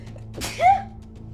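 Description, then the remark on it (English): A single sharp sneeze bursts out, a quick explosive blast trailing into a short voiced tail, over a steady low background hum with no talking. “God says Gesundheit.”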